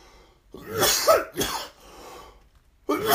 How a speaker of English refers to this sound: We don't want to fucking cough. My God. Number, coughing is what bothers your fucking throat and give you a headache.